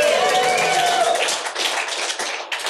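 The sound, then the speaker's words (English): A crowd in Amsterdam applauds steadily for colleagues in Bucharest and Brazil, a dense wash of many hands clapping with cheering and a whistle-like tone over it at first, holding at an even, loud level throughout. “So give it up for Bucharest in Brazil.”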